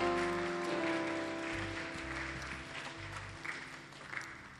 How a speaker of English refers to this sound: Wow. Oh, you can clap for them.